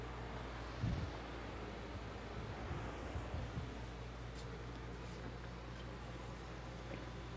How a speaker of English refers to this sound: Yeah, that did sound a bit like a dial tone there or something.